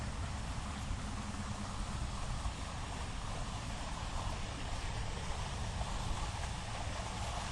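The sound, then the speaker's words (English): A steady, continuous, loud rush of water running down at a lake, with a broad hissing texture that never lets up; a gusty, wind-like roar blends into it and no voices are heard. “See the water running down.”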